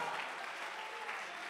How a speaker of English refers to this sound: That's a hand clapping, shouting, dancing, moving. Ah, this place is thrumming with power and movement and vitality.